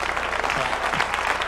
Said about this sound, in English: Amen. Amen. Clap on that.